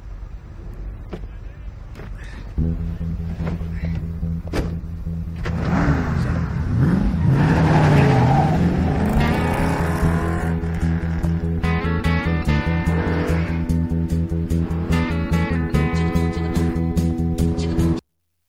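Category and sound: vehicle, car engine revving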